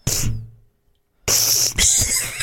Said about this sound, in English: You know, I never had any sniffles at all until I got in front of this. She's practically using my microphone as a Kleenex.